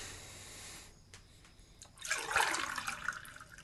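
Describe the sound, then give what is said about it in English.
Water splashes and pours for about a second and a half to rinse a glass, a bright rushing burst that tapers into trickling, after a quiet stretch with a few faint clicks. “So, you want to rinse?”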